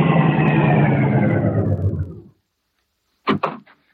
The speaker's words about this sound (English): Car coming.